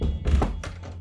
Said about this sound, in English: Sir, please close the door behind you. Oh, yeah, sorry.